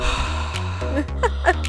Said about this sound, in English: Heavy breathing.